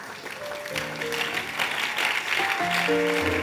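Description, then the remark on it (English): An audience claps steadily in a dense, continuous patter that grows slightly louder, while sustained keyboard notes hold underneath. “Oh, if you are clapping, clap for me because this is free counsel.”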